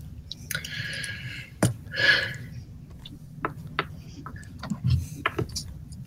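A chair creaks in a series of drawn-out, groaning squeaks and sharp clicks as someone slowly leans backward in it, over a low steady rumble, with no one speaking.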